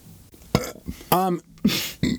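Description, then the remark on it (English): A loud burp with a low, croaky voiced rumble, surrounded by a few short breathy vocal bursts and throat noises. “…'s burps.”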